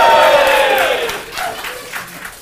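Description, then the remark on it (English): A live audience bursts into loud cheering and whooping for Brian Floyd, with applause that quickly fades to scattered claps and a few lingering shouts. “give it up for Brian Floyd.”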